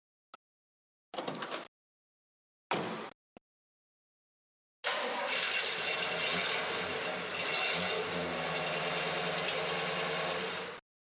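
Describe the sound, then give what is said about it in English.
The V8 Turbofire 327 cubic inch engine of a 1966 Chevy Impala two-door convertible, producing 275 horsepower, gives two short bursts, then fires up and idles loudly with a steady, throbbing rumble for about six seconds before cutting off. “That was a 1966 Chevy Impala two-door convertible.”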